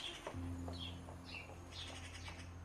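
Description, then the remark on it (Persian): Soft, scattered chirps from cuckoos and sparrows picking at seeds in a uniformly green grass field come in short bursts, over a low, steady hum with no one talking. “جز چند تا فاخته و گنجیش که اون وسط دونه میچینه.”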